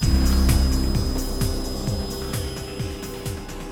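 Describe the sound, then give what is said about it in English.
A helicopter runs: a steady low engine drone with a rapid, regular thumping of rotor blades, loud and continuous throughout, with no voices. “Come on now, all of you, to the chopper.”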